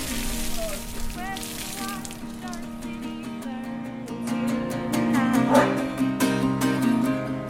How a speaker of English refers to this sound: As noon turned to one, the rain continued to fall steadily. Shoppers hurried from tent to tent.